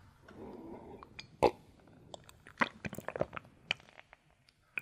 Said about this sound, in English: This water is good. So, you should take a few sips of this water here.